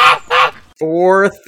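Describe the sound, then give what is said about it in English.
Geese honking: two short, raspy squawks followed by a longer, loud nasal honk and a brief final call, with no talking. “I was feeding the geese.”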